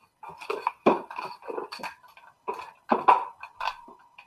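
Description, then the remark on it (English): Window blinds rattle and clatter in irregular bursts as a cat is rustled out of them, a series of sharp, jangly clacks with short pauses between, fairly loud and with no talking. “I wish I knew how to do like elevator music or something, but instead you just heard me fucking rustling a cat out of the blinds.”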